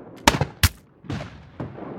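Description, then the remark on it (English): Gunfire in a battle as hundreds of men of the 54th charge a Confederate fort: two sharp, loud cracks close together, followed by duller, rumbling shots that trail off, with a steady low noise underneath and no voices. “Looking down at his hundreds of courageous men charging in amid cracking guns, he raises his sword and yells out, "Forward, 54th!”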